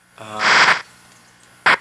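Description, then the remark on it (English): Video game skis hiss across snow in a longer swelling rush of noise, then a short sharp second swish, over a faint steady low hum. “I guess that little hissing noise is supposed to be the skis on the snow.”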